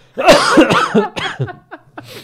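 A man coughs in a loud fit of several harsh, rapid bursts that taper into smaller, wheezy coughs toward the end, with no talking.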